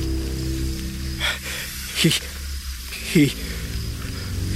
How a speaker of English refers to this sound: All I could make out were the fringes of his uniform and the thin, slippery black snakes that oozed from the cuffs of his sleeves and slithered to me as though to attack.